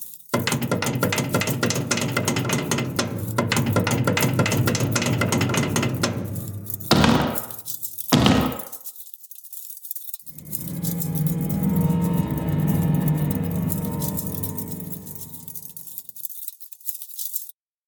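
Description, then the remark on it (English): A door latch on a ship's main deck, which has four doors, rattles and clicks in a dense run of mechanical ratcheting, then two sharp, loud clacks ring out before a steadier grinding, clicking mechanism returns. No voices are heard. “Then, out of nowhere, came again the door latch noise from the main deck with the four doors.”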